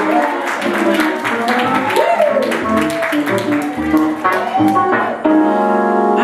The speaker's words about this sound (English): Amen. Amen. Amen. Let's say amen as you clap.